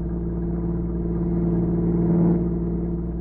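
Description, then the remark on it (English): A car engine on a road rumbles steadily, swelling a little louder as it draws near and revs briefly before settling again. No one speaks. “Here's his car.”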